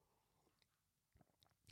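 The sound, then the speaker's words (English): Someone takes a quick sip of coffee, a few soft wet slurping and swallowing noises after a quiet pause, with no talking. “Grab a sip of my coffee.”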